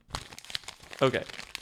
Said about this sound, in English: We have all of the nominees just written on crumpled up sheets of paper that we decrinkle.